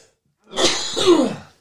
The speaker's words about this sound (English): Man, I've had the coughs for like 3 weeks. Yeah, you have.